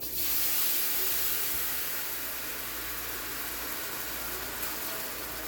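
Beans sizzle in hot unsalted butter and bacon fat with a steady, bright hiss that runs unbroken for several seconds, loudest at the start, over a faint low hum, with no voices.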